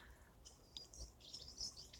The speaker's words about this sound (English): Oh, the grosbeaks are in here too. They're really beautiful.